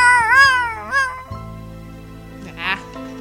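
A cat meows: a long, wavering cry followed quickly by a shorter one, then a brief third meow after a pause, over a steady low background hum.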